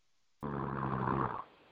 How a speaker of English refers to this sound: Somebody's snoring. Somebody's snoring. No. Am I that boring?